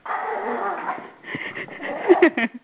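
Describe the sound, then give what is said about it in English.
A small female Shih Tzu dog, about 4 pounds, whines and whimpers in high, wavering tones as she wants attention, then lets out a few short, sharp yappy barks near the end. “She's a Shih Tzu. She's like 4 pounds, right?”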